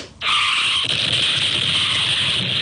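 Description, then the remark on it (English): A car's tires screech loudly in a long, continuous skid that starts abruptly and holds steady for a couple of seconds, before the car crashes into a house across the street; no voices. “and then crashes into that blue home across the street”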